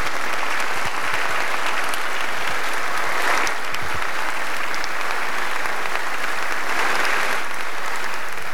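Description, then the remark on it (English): Sustained applause from an audience after Zelensky's address to President Biden delivered over a Zoom call, a dense, steady wash of many hands clapping at an even loudness throughout, with no voices standing out above it. “I'm pretty sure that was the first time in history people applauded a Zoom call.”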